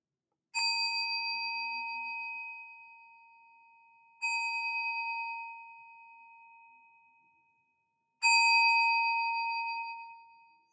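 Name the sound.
meditation bell being rung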